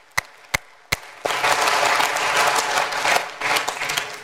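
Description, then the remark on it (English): At a church service, three sharp, separate claps ring out before a full round of audience applause for the people standing erupts, a dense, steady wash of many hands clapping loudly for several seconds. “Will you give a round of applause to the people standing right now?”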